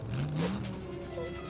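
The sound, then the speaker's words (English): A video game car engine revs up with a rising, steady whine, sounding synthetic, continuous with no talking over it. “Okay, I'm going to turn into a car.”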